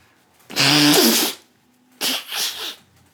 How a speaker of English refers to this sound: Bless you again. I don't know what's wrong with me.